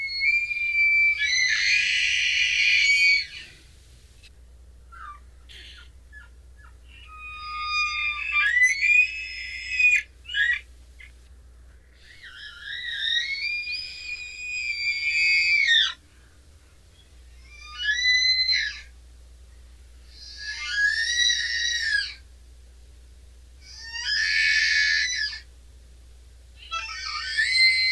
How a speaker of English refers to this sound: That is the cry of the bull elk. The bull elk is the largest species in the deer family, and is found mostly in North America and Eastern Asia. They average in weight 496 to 531 pounds, and they are about 4.3 feet at the shoulder high.